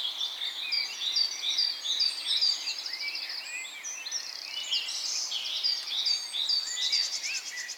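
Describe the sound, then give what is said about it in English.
A dense chorus of many birds singing at once, with overlapping chirps, trills and whistles running steadily throughout at moderate volume, with no voices. “Or the birds.”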